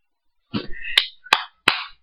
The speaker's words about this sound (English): I want to give a round of applause to Wisconsin.